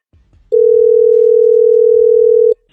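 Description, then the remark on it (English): A phone ringing on an outgoing call placed by the Y107 Morning Show for its Hook Up or Hang Up segment: one loud, steady electronic ring tone lasting about two seconds, with a faint low murmur just before it and a brief click at the end. “Mind open, phone ringing.”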